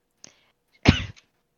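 A single sharp cough, one short explosive burst with a rough, breathy tail, preceded by a faint click of breath. No talking around it.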